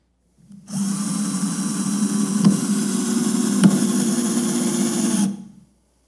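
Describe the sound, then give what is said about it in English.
A power drill whirs steadily for about four and a half seconds, driving a screw, with a high buzzing motor whine, a couple of brief clicks midway, then stops abruptly. No one speaks. “And I want you to see a very brief video, and I want you to listen to the difference between a drill and an impact driver.”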